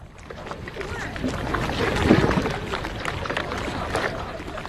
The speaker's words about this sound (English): Kräftiger Wind. Strong winds, rough waters, rocking boat.